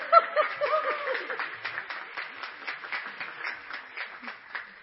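People at Community Baptist Church applaud on the morning of the 5th of July as someone gets up to the front, a dense patter of many hands clapping steadily for several seconds, mixed with scattered laughter and cheering voices near the start.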